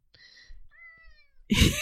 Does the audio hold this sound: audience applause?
no